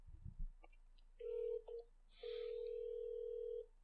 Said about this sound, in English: Loud ass ringtone on that speaker.